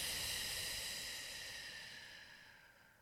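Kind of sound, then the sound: human body sound, long exhale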